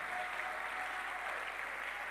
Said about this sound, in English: And my prayer is, as you are clapping, you are seeing who you were before and who you are now. And to know that God only spared your life and showed you mercy. Can I get a clap and a shout of a people who have been redeemed only by grace?